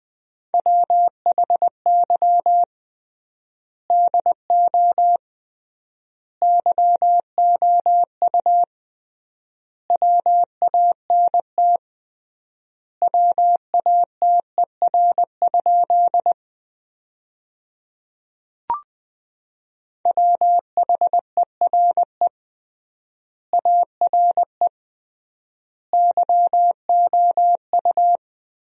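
Morse code at about 20 words per minute with triple word spacing, sending sentences made from the 200 most common words: a single steady mid-pitched beep keyed in quick dots and dashes, grouped into words separated by long pauses, with one brief click partway through and no voices.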